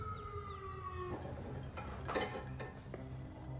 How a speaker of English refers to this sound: I think I just heard an ambulance coming.